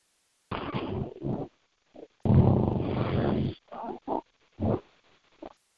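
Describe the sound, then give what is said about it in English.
Heavy, ragged breathing comes over a muffled phone line in uneven bursts: a couple of short huffs, one long rasping exhale, then several quick snorting puffs, loud and grunty with silence between. “Got some heavy breathing on the phone.”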